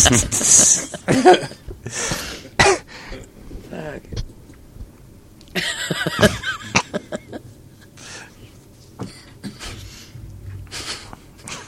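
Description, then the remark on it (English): Several harsh throat-clearing bursts come in short clusters, with a louder rasping one midway, separated by quieter stretches of background noise. “Did you really YouTube let me clear my throat?”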